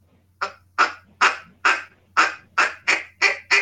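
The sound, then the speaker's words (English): A duck call blown in a string of nine short, soft, raspy quacks, evenly spaced at a steady rhythm, a sound used for finishing ducks when hunting. Each note is brief and buzzy, with no voices alongside. “Everybody just needs to learn to just make really soft little sounds the duck call. So quack.”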